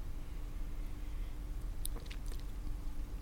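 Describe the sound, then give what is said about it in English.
Someone tasting a strong, sweet, boozy alcoholic drink takes a quiet sip, with a few soft, wet mouth clicks and a slight slurp over a low steady hum. Nobody speaks. “So I'm going to take a sip now.”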